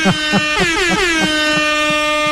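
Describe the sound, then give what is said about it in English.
A loud, sustained air horn blast lasting over two seconds, its brassy harmonic tones bending and wavering in pitch, with rhythmic pulsing low thumps underneath. “I mean, get the horn. I want the horn.”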